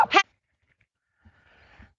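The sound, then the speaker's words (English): A dog gives one short, sharp bark at the very start, followed by near silence and some faint, muffled background noise. “My dog started barking right in the middle of everything.”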